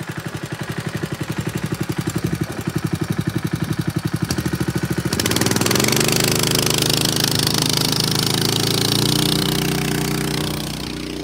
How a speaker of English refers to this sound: I don't like cavitating a pump. Rubs me the wrong way.